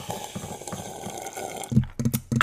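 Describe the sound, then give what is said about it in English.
Someone slurps coffee in a series of wet, airy sips. A softer gurgling stretch gives way to several louder, sharper slurps near the end. “I'm gonna slurp my coffee for you guys.”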